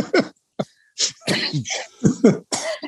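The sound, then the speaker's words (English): A loud fit of coughing: several harsh, raspy bursts in quick succession with short gaps, some sounding rough and throaty, with no speech around them. “Excuse me for the coughing.”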